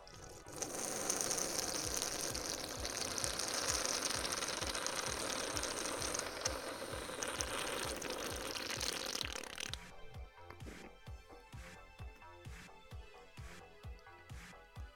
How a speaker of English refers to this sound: Your number one source for the longest fucking sips of beer you've ever heard.